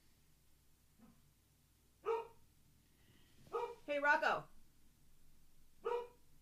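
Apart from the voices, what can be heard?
dog barking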